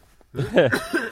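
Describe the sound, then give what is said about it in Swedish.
A short, rough throat clearing about a second long, done off the microphone, with a gravelly voiced rasp that swells and then fades, with no speech. “oj, nu måste jag harkla lite.”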